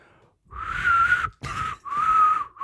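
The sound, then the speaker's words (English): A person whistles a short melody, clear sustained tones in three phrases with brief pauses between them, no talking. “All right, I can whistle. I can whistle.”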